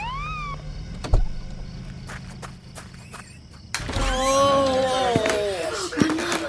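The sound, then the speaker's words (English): A flashing red ambulance arrives in Maine to take an injured grandmother away, its siren wailing with gliding, sweeping tones that grow louder partway through, mixed with sharp thuds like doors or footsteps and faint background activity. “two men and a lady came in a flashing red ambulance to take grandma away.”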